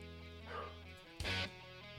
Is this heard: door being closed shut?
no